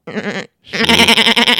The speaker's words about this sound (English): Oh, that's such a great sheep. Just listen to it again before you go on with your thought.